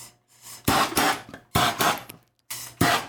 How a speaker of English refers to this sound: So what am I hearing now? Just a little torch. Just a torch. Yeah, just a torch. A torch at the bar.